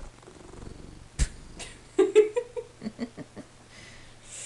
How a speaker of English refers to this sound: I want to hear a cat purr loud as fuck. Y'all hear that? That is Charlie.